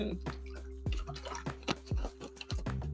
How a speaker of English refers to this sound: I drank all my tea before the episode started. Let me get a sip of a little water. Hold on, y'all.